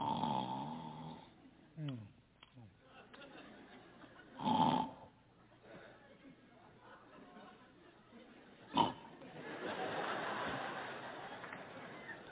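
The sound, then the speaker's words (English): A person imitates their wife's loud, rasping snores, with a few sharp snorting bursts and a longer rumbling snore near the end, fairly loud, with no other talk. “My wife snores so bad.”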